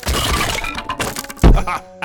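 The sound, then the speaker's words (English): A clattering, cracking crash as someone running down the steps of a boat falls through a hole, ending in a heavy thud about halfway in as they land on another person, followed by a brief scrape and settling debris. “then he starts running down the steps and falls through the hole.”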